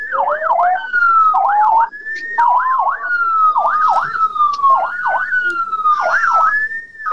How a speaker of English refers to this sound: I'm parked on the side of the road and there's an ambulance rounding me up. He's off and going now.